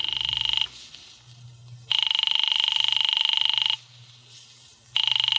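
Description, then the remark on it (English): A telephone rings over and over on a call to Diamond's office, in loud, buzzy bursts of about two seconds separated by short pauses, with no one picking up and no voices. “His office don't answer.”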